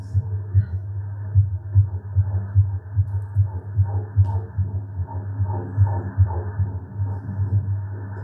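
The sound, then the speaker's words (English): A rapid, steady whooshing pulse from an ultrasound doppler, a fast fetal heartbeat of about 150 beats per minute, thumping about two or three times a second over a low muffled hum. “It's a fast heartbeat, which means it's not your heartbeat.”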